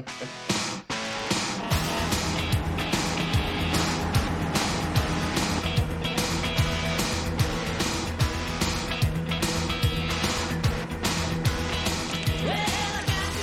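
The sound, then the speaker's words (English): Inside a moving bus: a steady, loud engine rumble and road roar with frequent rattles and knocks from the cabin, continuing without a break and with no clear talking. “You ever traveled by bus before?”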